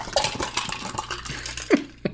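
Moscow mule cocktails being mixed and poured: scattered clinks and rattles of ice and cups, with a couple of sharper, louder knocks near the end and no talking.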